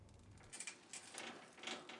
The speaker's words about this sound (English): Glass automatic doors glide open as we enter the lobby.